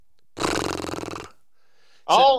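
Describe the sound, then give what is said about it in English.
A person makes a loud, raspy vocal call to flush a quail covey, a rough growling rattle lasting about a second, then after a short pause a brief harsh voiced burst. “You want to get those birds in the air? Do this.”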